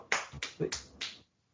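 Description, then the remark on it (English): Four crisp finger snaps in a quick, even rhythm, fairly loud, with a faint murmur between them before everything drops to silence. “But yeah, snaps out, man, for gay acceptance.”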